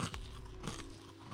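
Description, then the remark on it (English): Crunching as someone bites into brittle honeycomb crunch candy, a few sharp crackly bites followed by steady chewing, quiet with no talking. “Do you just have a honeycomb crunch? Yeah, we'll do some ASMR.”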